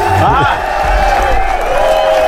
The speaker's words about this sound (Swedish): Vi tar en applåd!